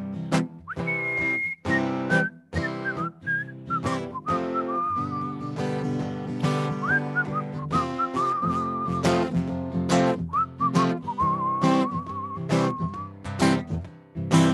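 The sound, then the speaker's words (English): Someone whistles a bright, wandering melody, the clear tone sliding between notes over a full, rhythmic musical backing that keeps steady throughout. “I like to whistle.”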